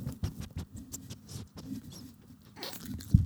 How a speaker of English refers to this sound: Ooh. Some ASMR from the mouth of a dog. That's what our audience is looking for. Oh my God, that was the cutest sound. Yeah, yes, I love the little sniffs. That's what I live for, little puppy sniffs.